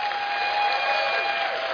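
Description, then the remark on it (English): An audience claps for the Lord together in a dense, steady wash of applause that holds even and loud throughout, with a faint steady tone humming underneath and no one speaking. “If I make sense, give the Lord a clap.”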